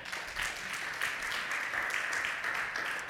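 An audience applauds steadily, many hands clapping into a dense, continuous wash of claps that holds at an even level for a few seconds, with no one speaking over it.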